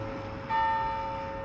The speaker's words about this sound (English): We have some bells ringing.